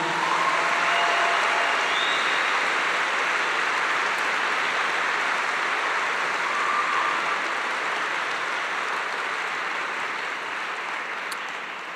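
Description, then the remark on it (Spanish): A crowd gives a loud applause to Jesus, a dense wash of clapping that holds for several seconds before tapering off slightly at the end, with no voices over it. “Así que dale un fuerte aplauso a Jesús.”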